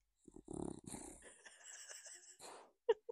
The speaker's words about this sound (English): hear the dog. He's turned into a pig.